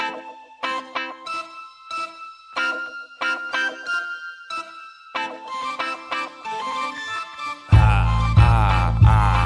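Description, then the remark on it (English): A phone ringing tone for an outgoing call plays as a bright, chiming melody in short repeated bursts with brief pauses between them, then a sudden loud, harsh wash of sound takes over at the end. “and we're gonna get him on the phone.”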